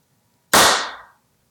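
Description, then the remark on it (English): One sharp, loud hand clap at the start of a video recording bursts out of silence, its bright ringing tail fading away over about half a second, with no voices present. “Get a little clappity clap.”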